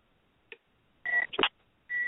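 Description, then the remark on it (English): Electronic telephone tones of an incoming call from a caller phoning in to a live on-air broadcast: a short blip, then a steady beep broken by a brief burst of noise, and another sustained tone starting near the end, all fairly loud and with no talking. “Oh, we have a caller.”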